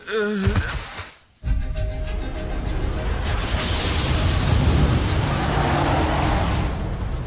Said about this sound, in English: Keep the car moving for as long as it doesn't melt.